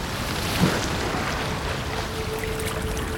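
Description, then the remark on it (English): Steady, dense rush of ocean waves pounding against a ship's hull, a continuous churning wash with one brief slap near the start, fairly loud, with no voices. “Waves pounding against the siding of the ship, Captain Jensen stands at the captain's wheel, shouting orders over the sound of crashing waves, howling winds, and thunder cracking in the clouds above.”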